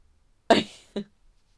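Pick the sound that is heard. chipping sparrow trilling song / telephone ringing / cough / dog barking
cough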